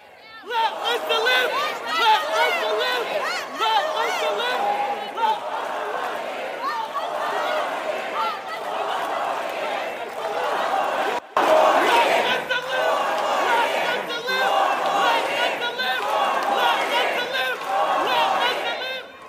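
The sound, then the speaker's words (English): A large crowd at President Joe Biden's campaign rally in Virginia, supporters shouting "four more years" as protesters with Palestinian flags interrupt, chants and shouts over one another in a loud, steady roar of many voices, broken by one abrupt pause about two-thirds of the way through. “You can hear the Biden supporters all shouting four more years, but you've obviously got people with Palestinian flags there demonstrating.”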